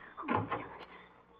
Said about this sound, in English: Oh, somebody's coming in the door.